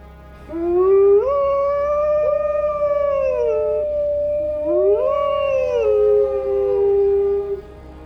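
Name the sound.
wolf howling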